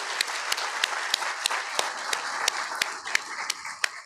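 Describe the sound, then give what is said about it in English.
An audience applauds steadily for about four seconds to recognize a high school graduate, a dense wash of many hands, with one sharp, evenly timed clap cutting through roughly three times a second. No one speaks. “Let's give Garrett a good round of applause.”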